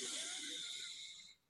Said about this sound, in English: And again, breathe in and breathe out. Breathing out either through the nose or through pursed lips. Breathing in.